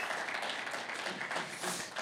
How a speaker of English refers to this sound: I just want to say happy Mother's Day to all the moms. Can we give all the moms a big hand clap? Come on, like we mean it. Like they're amazing.